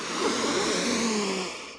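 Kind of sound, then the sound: human body sound, sniffing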